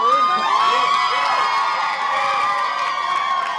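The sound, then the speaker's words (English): A crowd of Elizabeth Warren supporters erupts in loud, sustained cheering as their group reaches viability, with high-pitched shouts and whoops layered over a dense, steady roar that holds at full volume throughout. “The crowd of Warren supporters erupted when they hit viability.”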